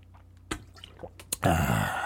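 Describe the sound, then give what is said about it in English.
Water is poured or drunk: a couple of sharp liquid clicks, then a loud, steady gush of water running for the last half second or so, with no voices. “But you know I got my trusty co-host with me, water.”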